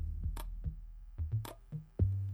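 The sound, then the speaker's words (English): A series of sharp ticking clicks from a clock that has just been put up and started, roughly six over a couple of seconds in a slightly uneven rhythm, fairly loud over a low steady hum, with no voices. “So we're going to put this clock up. We're going to start it right now.”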